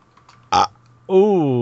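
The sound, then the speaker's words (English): A brief sharp hiss-like burst, then after a pause a loud, drawn-out burp after drinking Mountain Dew soda, with a wobbling, croaky pitch that lasts about half a second. “And the sound of the Mountain Dew burp means it's time to move on”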